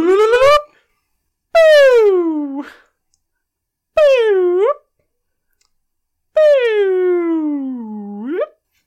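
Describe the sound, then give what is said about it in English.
A voice imitates a police siren in four loud wailing sweeps, each dipping low then swooping back up in pitch, separated by short silent pauses. “You'll notice that sounded kind of like a siren, but not really.”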